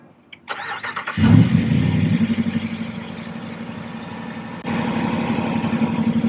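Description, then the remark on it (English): An off-road vehicle's engine, with a sealed-off intake, cranks briefly, catches with a loud roar, then settles into a deep, steady, rumbling idle with a slight rise in revs near the end. The vehicle runs Nitto Ridge Grappler 38s on 20s. “Well, let's give it a crank and see what it sounds like.”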